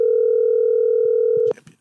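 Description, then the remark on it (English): A loud, steady telephone dial tone as a call is being placed hums on one unbroken pitch for about a second and a half, then cuts off abruptly, followed by brief faint voices and rustling. “Because now we just calling people all night.”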